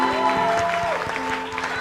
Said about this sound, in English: But clap your hands for your woman pastor. Your woman pastor.